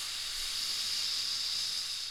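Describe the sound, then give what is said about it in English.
A voice imitates a steady, drawn-out hiss of gas or a big snake in a cave, held evenly for about two seconds, with no words spoken. “start hearing a sound that one of them thinks is a big snake, and then the other one's like, wait, no, that's gas.”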